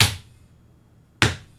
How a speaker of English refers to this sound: Let's crush this one VHS. Okay. Let's just destroy it. Oh, God. It didn't break. You're just hitting it. You're just slapping it.